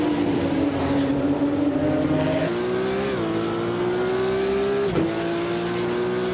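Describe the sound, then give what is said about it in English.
Race car engines roar loudly and steadily on the final lap of a 3.27-mile track in the first round of the GridLife iRacers Hard Times Challenge, cars running down to turn one. Their pitch climbs as they accelerate, with a few abrupt drops where gears shift before the whine builds again. “As we come now down to the white flag, one more time around, 3.27 miles to crown a winner”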